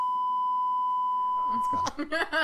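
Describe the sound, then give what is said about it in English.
A steady, loud censor bleep tone holds for nearly two seconds, then cuts off abruptly as a person starts talking. “That's but being beeped out.”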